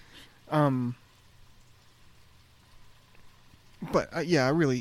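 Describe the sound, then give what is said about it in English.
A backing track of light rain, not raining hard, hisses softly and steadily in the background, faint and continuous, while someone speaks briefly near the start and again at the end. “You know, like, we got a nice little backtrack of some rain sounds.”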